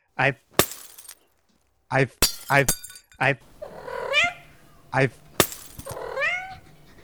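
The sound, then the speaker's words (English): Glasses are smashed in a few sharp, bright crashes spaced seconds apart, mixed with short pulsing bursts and loud, wavering cat-like yowls that rise and fall in pitch. “You're smashing those glasses again.”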